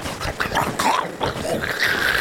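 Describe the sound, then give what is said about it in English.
A voice imitates a dog unhinging its jaw and eating the snow ahead of it, making a string of wet, crunchy gnashing and snarling noises for a couple of seconds, with no words spoken. “Yeah, he's eating the snow ahead of him to replenish his bladder as Perfect.”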